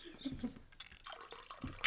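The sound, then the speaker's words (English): Boxed Sauvignon Blanc wine trickles and drips from the box spout into a glass, a faint uneven liquid patter with brief splashy bursts, while voices murmur in the background. “It is a boxed wine. I'm going to pour myself more right now.”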